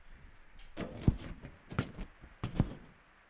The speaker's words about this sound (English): The rain. Do you hear that?